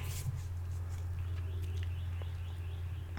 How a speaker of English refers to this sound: Y'all hear these birds?